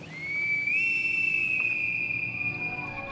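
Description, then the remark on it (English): A shrill, piercing whistle like a bosun's pipe sounds as one long held note. It steps slightly higher early on, then sustains steadily for about three seconds with no voices. “Then we hear a whistle like a bosun's pipe.”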